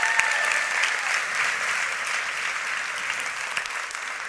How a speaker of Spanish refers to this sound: Gracias. Denle un fuerte aplauso.